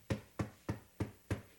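Five steady knocks on a wooden surface, evenly spaced about a third of a second apart, each a dull, solid thud with no voices around them.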